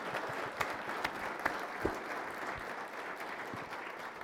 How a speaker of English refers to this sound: Please give a round of applause for this very impressive panel.